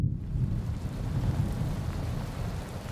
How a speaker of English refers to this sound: As you consider this, you hear a low rumble as the skies of Wonderland quickly turn overcast and a thunderstorm begins to roll in.